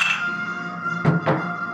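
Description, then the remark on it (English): Glasses of Shiner Oktoberfest-style beer clink together twice in quick succession in a "Prost" toast, fairly loud, over a steady ringing hum, with no one speaking. “So let's PROST! Cheers, PROST! PROST!”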